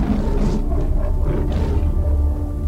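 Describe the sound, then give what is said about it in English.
A deep, guttural creature roar sweeps across the grass of a yellow savanna, rumbling low and steady for a few seconds, loud, with no voices over it. “A guttural roar swept across the grass.”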